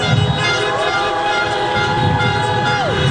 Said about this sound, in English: Honk your horn if you want looting and violence. Honk, honk, honk.